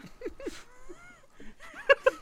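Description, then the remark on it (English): Cats fighting behind a door, muffled long wavering yowls giving way to a few sharp, loud screeching cries at the end. “We had a cat problem.”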